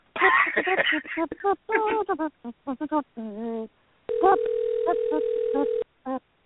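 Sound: telephone call ringing unanswered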